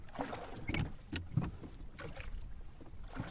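Oars splash and pull through water in a steady rhythm as a man rows, with soft sloshing and creaking as a small rowboat glides along, moderately loud, with a light breeze.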